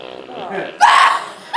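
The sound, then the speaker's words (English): A voice produces a short, raspy fart imitation, as a man's fart after being kicked in the stomach: a drawn-out wavering hum swells into one loud, sputtering burst lasting under half a second, then a brief final puff. “He farted!”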